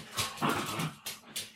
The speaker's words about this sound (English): The dogs, it's Fenrir and the dogs playing, it's fine. I can hear that. Up in the distance. It's fine.